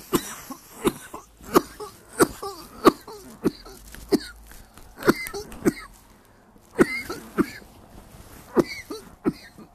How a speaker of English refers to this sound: You gotta cough it out.